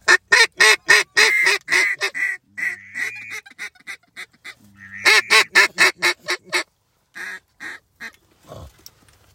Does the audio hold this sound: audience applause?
no